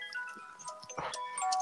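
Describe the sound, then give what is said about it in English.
A clock chimes a melodic tune of sustained, ringing bell-like tones at moderate volume, one note flowing into the next, with faint rustling in the background and no one speaking. “There goes the clock again. The freaking clock.”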